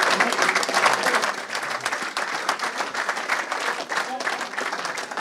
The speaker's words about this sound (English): Okay, thank you very much, guys. We're going to move on to the next group. So can we give a big round of applause, please